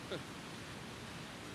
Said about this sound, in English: This is the dam in the spring. You can imagine the power and the authority that comes from that water. I'm talking about Little Cushapaquack.